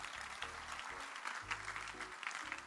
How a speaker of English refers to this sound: Clap again for the Lord Jesus.